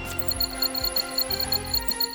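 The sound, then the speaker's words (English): A cartoon radar scanning effect as Scout, the voice assistant of Carl the super truck, starts the radar. Steady, rapid high-pitched electronic beeps, about seven in two seconds, play over a low pulsing electronic throb. No voices. “Initiating the radar.”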